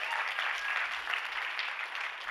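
A crowd claps steadily throughout, a dense, even patter of many hands at moderate loudness with no voices breaking through.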